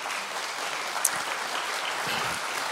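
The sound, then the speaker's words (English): A standing crowd, asked to pray a prayer of commitment, claps together instead in a dense, steady wash of applause that holds an even loudness throughout, with no voices heard over it. “Now, you're supposed to be praying, and you're clapping, you cheaters.”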